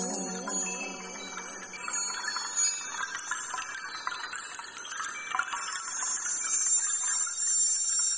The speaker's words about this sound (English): And that's it for this week's Hot Button Conversation. Let's bring in the wind chimes.